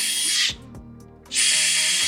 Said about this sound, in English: So I've done this a few different times where I drilled out the entire glove box and also done less holes like I just did here. This is all it really needs, in my opinion.